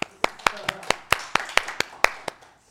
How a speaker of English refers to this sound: Yay, you're halfway there. Clap yourselves up.